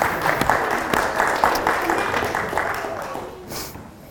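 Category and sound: crowd, audience applause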